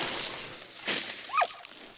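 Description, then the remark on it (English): Steady hiss of water spraying from a garden hose that is spinning and thrashing about, with a sudden louder whoosh of splashing midway and a second smaller surge shortly after, fairly quiet overall. “Oh, look at the hose go. It's spinning and spinning like a sea serpent.”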